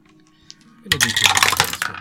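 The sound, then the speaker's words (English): Dice clatter and rattle across a hard tabletop in a quick burst of clicking impacts, fairly loud, after a moment of near quiet; the roll is for a saving throw in a tabletop role-playing game and lands on a natural one. “Let me use RollFare dice. Natural one.”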